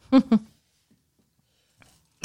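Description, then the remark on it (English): A loud, voiced sneeze breaks out in two quick bursts, followed by near silence with a faint breathy sound and the clipped start of another noise at the very end. “Bless you.”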